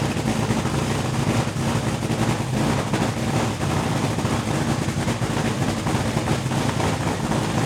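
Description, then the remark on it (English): A dragster engine roars without a break, a loud, dense, gritty blast with a deep throbbing low end and rough mechanical texture. It holds steady throughout, with no voices. “I'm going to put the dragster on.”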